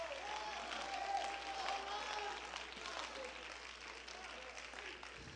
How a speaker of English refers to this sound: Oh, clap your hands.